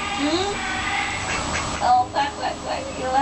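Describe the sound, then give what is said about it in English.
A duck quacks several times in short, nasal bursts, the calls clustering toward the end, with a background hiss and voices. “Quack, quack, quack.”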